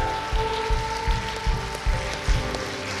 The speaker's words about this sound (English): Come on, let's give them a hand clap for being with us this morning.